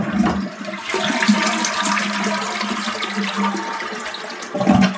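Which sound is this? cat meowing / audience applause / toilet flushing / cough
toilet flushing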